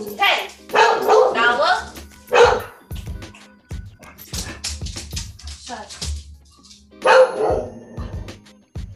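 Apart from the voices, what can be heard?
dog barking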